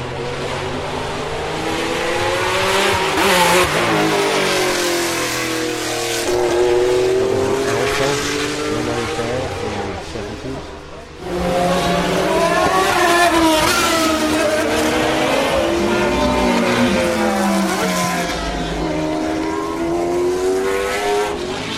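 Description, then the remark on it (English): A procession of McLaren race cars, from the old Can-Am car to the current MP4 12C Can-Am edition and including the 2008 McLaren F1 car, roars past, engines revving with rising and falling pitch sweeps as each one passes, loud and continuous, with a brief dip midway before the next cars arrive. “That was a display of McLarens that went past from the old Can-Am car to the current MP4 12C Can-Am edition.”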